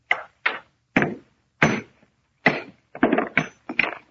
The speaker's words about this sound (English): Nothing but a stone. All I'm going to do is try and break it along this fissure. Get a hammer. Yeah. What if the stone break? Almost solid metal. I'll try.